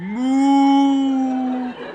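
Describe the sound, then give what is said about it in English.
A human voice imitates a cow being worried by a sheepdog with one long, steady, mid-pitched moo that rises briefly at the start, holds for over a second, then cuts off. “That's a cow being worried by a sheepdog.”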